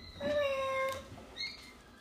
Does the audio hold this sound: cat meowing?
yes